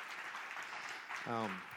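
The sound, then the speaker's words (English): A church audience applauds guests with steady, dense clapping throughout, and a single voice briefly rises over the noise near the end. “So can you, again, give them a warm round of applause?”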